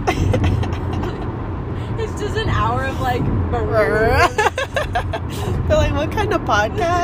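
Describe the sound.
Steady low road rumble from passing cars runs throughout, under continuous casual conversation between people.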